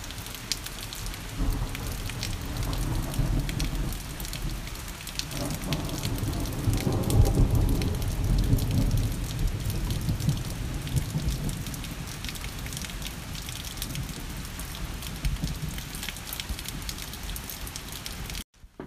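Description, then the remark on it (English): Heavy rain pours steadily and densely throughout at a cottage, with a deep rumble of thunder swelling low beneath it about midway through before fading back into the downpour. “I hope you have enjoyed the rain that has been the breaks in between.”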